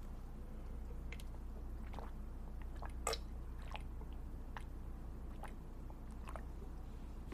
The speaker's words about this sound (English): Let me take a nice sip of my water before I spark up.